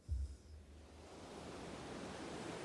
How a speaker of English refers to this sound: This actually fits because this is about the ocean sounds in the background. You hear that? This is important to the story.